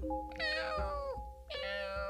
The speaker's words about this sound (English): But a couple minutes later, she heard a noise coming from inside the oven. Meow!